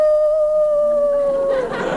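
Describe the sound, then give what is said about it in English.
A dog named Psyche gives one long, high, drawn-out whimpering howl, loud, sliding slightly down in pitch before breaking into a rougher, breathy sound at the end. “Oh, you are daft about that dog.”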